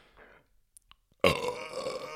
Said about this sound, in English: The burp was part of it.